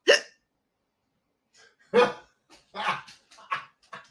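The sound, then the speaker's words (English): A person hiccups several times: sharp, abrupt bursts with gaps of a second or so between them, some followed by short breathy vocal sounds. “I'm so sorry about the hiccups.”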